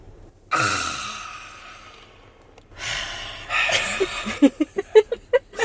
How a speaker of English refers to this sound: But I feel like we're breathing though. Yeah, we are. We are. We're doing breath work in the Jeep right now.